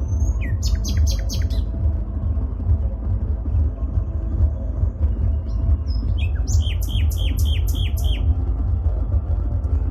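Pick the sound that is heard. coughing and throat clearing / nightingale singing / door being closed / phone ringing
nightingale singing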